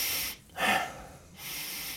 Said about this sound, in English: The key is to do a few breaths, even while you're getting out of bed and preparing your morning coffee or water or whatever it is, and just start breathing in a way that's inhale emphasized.